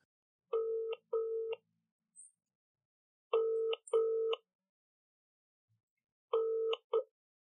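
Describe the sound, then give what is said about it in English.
A telephone ringing tone plays through the line as a call is placed to a woman: three pairs of short electronic buzzes, each pair separated by a pause of a couple of seconds. The tone is steady and clear, with no voices. “And I saved her details and I called her this week.”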